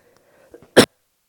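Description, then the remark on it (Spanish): A single sharp cough from a slightly ill speaker during a church service bursts out loudly after a couple of faint throaty catches, then gives way to silence. No one speaks. “Y disculpen que hoy estoy un poco enfermo, así que voy a estar tosiendo un poquito.”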